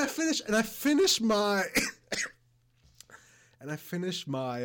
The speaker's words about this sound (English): Sorry about the coughing, guys.